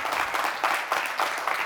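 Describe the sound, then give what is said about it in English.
A crowd claps loudly and steadily for the Lord at a morning service, a dense wash of many hands with rhythmic surges running through it and no one speaking. “Clap like whoever claps the loudest is gonna get everything on your Christmas list this year.”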